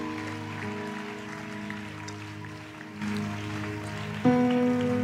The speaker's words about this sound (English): I believe we are permitted to clap. So put your hands together for the Lord.